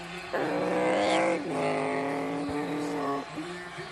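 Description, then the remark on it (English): Loud NASCAR race car engines whine steadily at a high pitch on a track, with the tone dropping and rising again as they shift and rev through a few continuous passes, as the leaders spin out and car 50 regains traction and takes the lead. “Fifty car spins out, 17. Spin out, every one of the leaders spin out, but the 50 gets the traction back and takes the lead.”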